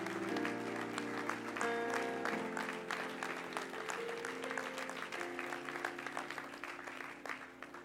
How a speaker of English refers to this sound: Let's give the Lord a hand clap of praise as if standing.